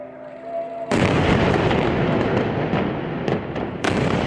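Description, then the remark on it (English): A sudden, massive blast erupts after a faint tonal hum, then a sustained roaring rumble punctuated by further sharp explosions in quick succession, loud, with no voices: explosions rip through a cluster of high-rise buildings in the Gaza Strip on 14 May 2021, raising a fireball and thick black smoke. “The explosion rips through the air, followed in quick succession by another.”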